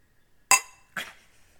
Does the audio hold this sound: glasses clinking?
yes